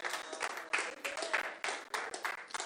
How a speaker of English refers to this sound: Now clap your hands because that felt good, didn't it? That felt good.